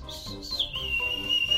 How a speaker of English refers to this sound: First is the penny whistle.